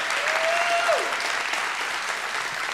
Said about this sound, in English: There is a whole team of people that is working to make sure that we can do this every week. And so can we show them a little honor today and give them a hand clap?